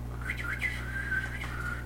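Someone whistles a wavering, sliding tone for about two seconds to call a dog, a little uneven and breathy, over a steady low background hum; nobody speaks.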